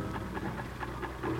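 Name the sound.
sewing machine running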